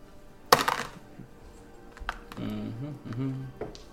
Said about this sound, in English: You two are fondling dice.